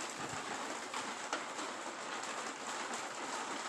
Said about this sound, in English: It's fucking hailing. What the fuck?